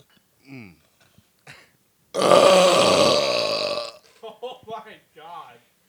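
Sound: loud burp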